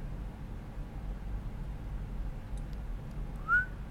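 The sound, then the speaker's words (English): A single short, high whistled note rises and dips near the end, standing out clearly over a steady low rumble and background hiss, with no talking. “I can't whistle that high.”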